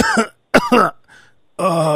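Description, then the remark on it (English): A person fakes a couple of short, forced coughs, throaty and deliberate, as if calling in sick, followed by a brief voiced groan, with no other talk. “Like, there's always a method, right? The two coughs.”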